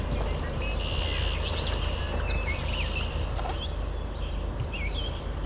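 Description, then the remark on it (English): Alder and willow flycatchers sing short, buzzy two-part phrases while a swamp sparrow trills, the songs repeating over a steady, low background rumble. “There's the alder. Thebeer. There's a swamp sparrow here too. And there's the Fitzbew.”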